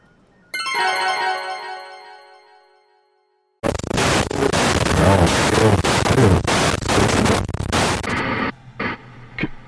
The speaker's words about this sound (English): Can you hear me? It's just static, so I'm not sure if I guess it doesn't matter.